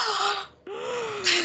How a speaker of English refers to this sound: We get Ted in a brown suede blazer. Cue all of your gasps.